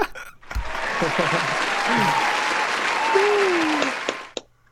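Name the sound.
applause sound effect played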